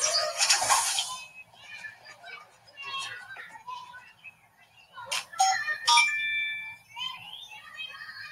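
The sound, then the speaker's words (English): Topaz's spell phone rings with a bright, chirpy electronic melody, its tones repeating in short bursts and going unanswered as someone calls every 10 seconds, with a burst of noise at the start and some busy background sound. “Come on, Topaz, pick up. I've been calling your spell phone every 10 seconds.”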